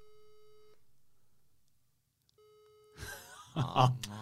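A telephone ringback tone buzzes steadily, pauses for about a second and a half, then starts again before being cut off by loud, overlapping voices and chatter.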